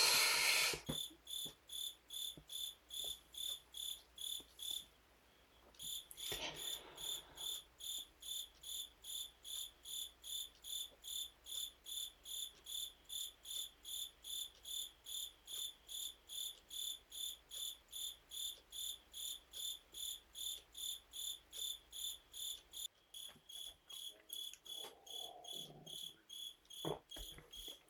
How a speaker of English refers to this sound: Oh man, that cricket. I wish I could kill it.